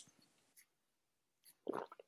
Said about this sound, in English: No, I'm not going to interrupt. I love the silence to that big-ass gulp of tea you just took.